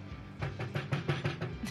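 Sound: knocking on a door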